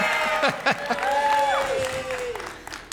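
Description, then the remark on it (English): A crowd boos with several long, drawn-out voices whose pitch slides and wavers, over a steady bed of crowd noise and scattered claps. “Oh, I didn't get booed? Oh, wait. Ah, there it is.”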